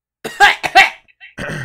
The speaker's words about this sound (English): He's coughing.